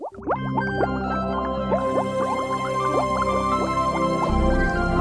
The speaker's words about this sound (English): When you hear that bubbling sound, get ready for another episode of Truth in the Test Tube.